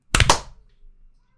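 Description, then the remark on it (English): A single sharp hand clap, made to create a spike on an audio recording: one crisp, loud snap that rings out briefly and fades within half a second, with no other sounds around it. “Clean clap”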